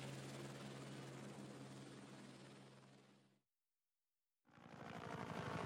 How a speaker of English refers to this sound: The chopper turned north to the next landing site.